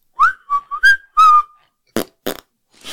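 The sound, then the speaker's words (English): A shrill whistle, said by three witnesses to be the engine of a UFO, rises and falls in four short warbling tones, then gives way to two harsh, rough bursts and a brief hiss. It is fairly loud, with no talking. “The interesting thing is that the three witness accounts slightly differ, but what they all agree on was that they heard the shrill whistle of the UFO's engine, which I believe you have an MP3 of.”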